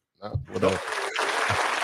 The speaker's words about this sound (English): Round of applause. Welcome. Rim shots and applause.